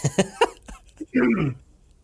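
Three quick, sharp coughs, followed by a brief rough vocal sound like throat clearing, then quiet.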